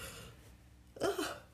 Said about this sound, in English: Your yawn's messing me up.